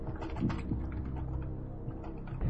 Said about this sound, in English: Okay. So I've typed it.